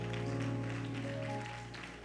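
An audience applauds for the Lord in a steady, dense patter, mixed with a sustained keyboard chord that holds underneath and fades slightly toward the end.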